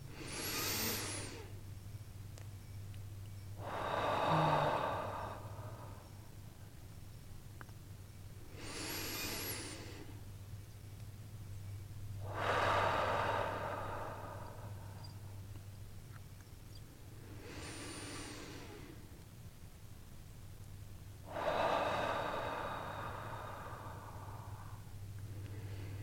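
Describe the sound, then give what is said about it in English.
Three slow, deep breaths taken to complete a releasing exercise, each a rushing inhale followed by a long exhale, evenly paced over a steady low electrical hum, with no talking. “And we're going to take three breaths together to complete this releasing process.”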